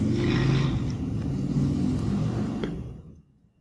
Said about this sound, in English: Sorry, that was a big-ass motorcycle. You guys had Mexican tonight? Giant motorcycle outside.